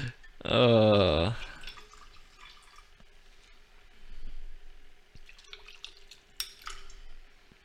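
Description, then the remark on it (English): A loud, brief pour of liquid into a glass, its gurgling tone rising in pitch as it fills, followed by faint drips and light clinks. “You're pouring a lot for yourself.”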